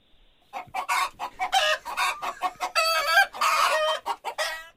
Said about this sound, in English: A chicken?